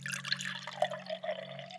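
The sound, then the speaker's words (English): Orange juice pours steadily into a glass for about two seconds, a continuous liquid gurgle with a faint rising tone as it fills, over a low steady background hum. “You get a pour, too.”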